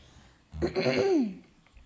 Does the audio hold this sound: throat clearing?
yes